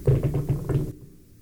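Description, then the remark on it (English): A loud, sputtering fart against a chair seat: a rapid run of low, flapping bursts lasting just under a second before it cuts off abruptly, with no one talking. “Did that break the chair? I hope so. That was a stanker. Ugh. That one's really going to smell bad.”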